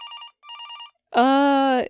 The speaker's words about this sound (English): The phone on the desk started ringing.